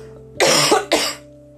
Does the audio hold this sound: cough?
yes